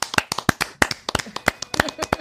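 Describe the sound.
A small group gives a 'big clap' in honour of a singer, a quick, uneven burst of sharp, loud handclaps lasting a couple of seconds, with faint voices mixed underneath.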